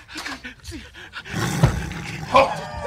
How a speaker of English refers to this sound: Holy fuck. He's not kidding. There's a tiger in there.